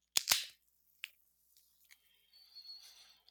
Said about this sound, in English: I'm drinking from our local brewery here in Hastings, Spiral Brewery, a stout called Hard Left. And I'll hold it close and try to pop here.